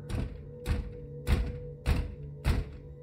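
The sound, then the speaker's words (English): Five heavy knocks on a front door at around 11 p.m., spaced evenly about half a second apart, each a solid, booming thud over a low steady hum, with no voices. “We'd made it to around 11 p.m. when we heard a loud bang on the front door.”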